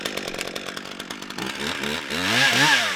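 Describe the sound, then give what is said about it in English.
A chainsaw revs and bites into the wood of pear trees being cut down by a county park crew in Johnson County, its engine pitch rising and falling in a steady, loud drone, with no voices. “His crew, you know, goes out, they find the pears, they take chainsaws to these trees.”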